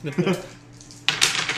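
Dice clatter onto a hard floor in two quick rattling bursts, fairly loud, with a brief lull between them and faint voices murmuring underneath, as players roll dice during a game.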